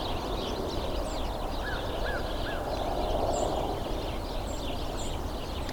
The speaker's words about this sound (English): I've seen several leave and no real change to the intensity of the number of house sparrow calls I'm hearing. Now they're getting quieter.